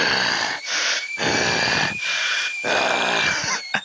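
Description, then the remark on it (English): A voice imitates a weird hissing sound, as if heard through bagpipes, growing louder into really heavy breathing: about six loud, rasping in-and-out gusts in a steady rhythm, with a thin high whine running underneath. “He's just going to hear, like, through the bagpipes, just, like, a weird hissing sound. And then it's just going to grow louder. And it's just, like, really heavy breathing.”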